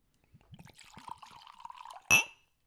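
Bourbon is poured into a glass in one steady gurgling stream for about two seconds, ending with a bright, ringing clink of glass against glass, clear.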